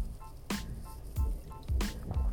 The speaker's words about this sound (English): And yes, I just took a sip of water in the middle of my little riff there.